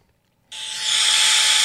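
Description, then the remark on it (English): A hair dryer switches on abruptly after a brief silence and runs steadily, a loud, hissing rush of air with a high whining tone that grows slightly stronger and holds. “Oh, a hair dryer.”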